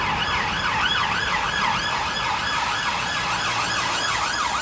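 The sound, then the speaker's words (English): An ambulance siren wails continuously, its pitch sweeping up and down in steady repeated cycles, loud, with a low rumble of traffic beneath it. “You see your ambulance and police up and down. About 10, 20 times a day.”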